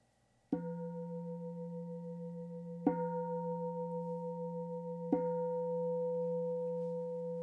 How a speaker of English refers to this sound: And then just being present with one's own body and listening for the bell.